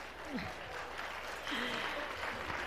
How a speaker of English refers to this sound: All right. Round of applause to our new choir members.